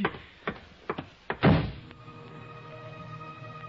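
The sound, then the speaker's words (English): A door opens with a few sharp latch clicks, then shuts with a solid thud, leaving a steady low hum afterward. No one speaks. “I can find the door.”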